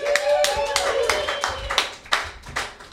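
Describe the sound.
A crowd bursts into sustained applause, dense overlapping claps filling the room, with a whistle and some cheering voices mixed in throughout.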